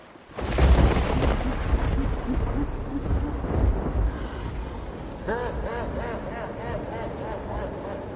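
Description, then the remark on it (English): A loud thunderclap bursts in near the start and rolls into a long, deep rumble over steady pouring rain, with wavering, whistling tones rising through the storm later on. “Lightning tore across the sky.”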